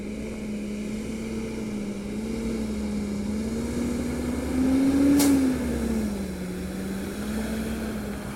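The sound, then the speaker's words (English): Heavy diesel engines drone steadily at a landfill as trucks come in to dispose of trash during the day, the low rumble swelling briefly near the middle with a short sharp clatter, then easing back to a continuous mechanical hum. No one speaks. “These are the sounds of a landfill as trucks come in to dispose of trash during the day.”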